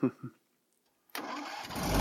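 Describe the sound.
A couple of short voice sounds, a second of quiet, then a lawnmower engine catches abruptly and keeps running with a rough, buzzing drone that grows steadily louder.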